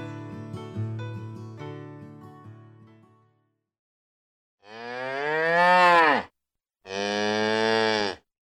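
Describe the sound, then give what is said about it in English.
Two long, loud cow moos, one after another with a short pause between, following a brief stretch of fading music and a moment of silence. “So far this season, we've been hearing a lot about how problematic cows are.”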